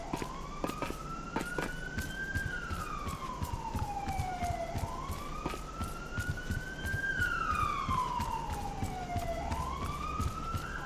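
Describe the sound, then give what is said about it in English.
A police siren wails in slow rising and falling sweeps, repeating steadily over a constant background rumble with scattered clicks; it is sustained throughout. “I don't know why people won't ever turn their sirens off when they do stuff like that, but okay.”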